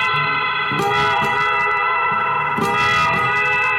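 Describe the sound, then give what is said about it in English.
A sustained, distorted electric guitar drone as the tone knob is turned from all the way off to all the way on, producing brightening whooshes at about one and three seconds, evoking a rumbling passing train; no voices. “For example, I'm going to have my tone all the way off and then put it all the way on, and you can get this.”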